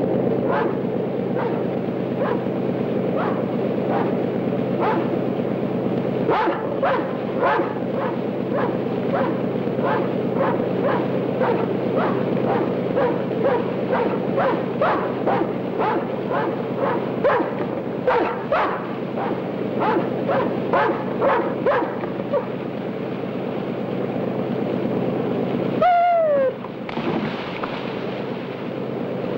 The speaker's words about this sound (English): It's the dog.